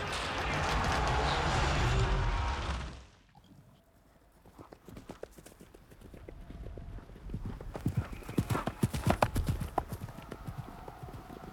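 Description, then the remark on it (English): A dense, loud wash of sound cuts off abruptly, then horse hooves clip-clop, starting sparse and quickening into a faster, louder, uneven patter. “And then one of my favourite bits of the whole record comes up, which is you can hear the horse breathe through its note, like there.”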